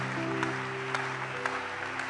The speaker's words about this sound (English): And so if you were brought up in a house where even one auntie or your mother goes to church, clap for yourself and clap for your family house. Clap for your family house.